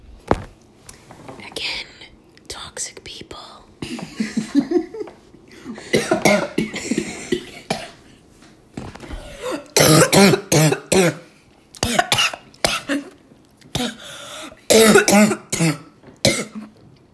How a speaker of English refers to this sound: choking on an apple because I made her laugh so hard she choked on her apple.